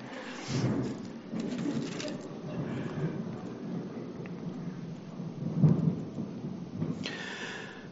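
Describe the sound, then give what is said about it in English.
Deep, rumbling thunder rolls through a storm after a flash of lightning, swelling into heavier booms around the middle and near the end over a steady wash of rain. “There's going to be another loud thunder. I just saw the lightning, so don't be scared.”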